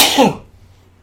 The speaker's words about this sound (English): Sneezing. Sorry.